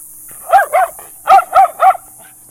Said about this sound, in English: The little 22-pounder won't hurt that big 40-pound dog. All right, guys. A little too frenzy. You guys are too excited.